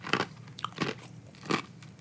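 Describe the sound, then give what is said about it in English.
Crunching as ice is chewed into the microphone, three sharp bursts of crackling bites spaced irregularly, loud, with no talking. “Don't worry, I'm going to chew ice into the microphone.”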